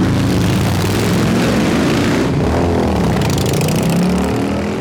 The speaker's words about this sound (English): my entire life, I will hear a Harley-Davidson coming, and still in my brain, it triggers, oh, here comes a really powerful motorcycle. It must be going 100 miles an hour, and then the Harley-Davidson goes by at 20 miles an hour. It has done its job.